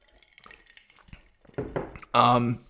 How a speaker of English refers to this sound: Take a quick sip of my Coke here.